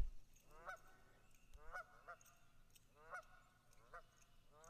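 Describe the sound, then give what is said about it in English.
Geese honk and squawk in a loose, repeating series of nasal calls, several overlapping cries that rise and fall against a low outdoor rumble. “The geese are cheering. The geese are squawking.”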